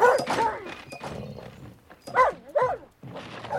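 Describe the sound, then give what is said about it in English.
A dog barks fiercely from inside a shed in a rapid volley of loud, harsh barks, with a brief pause in the middle before the barking starts up again. “Immediately, a volley of fierce barks came from the shed.”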